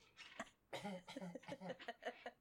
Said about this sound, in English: I was clearing my throat. I'm afraid to clear my throat in the microphone.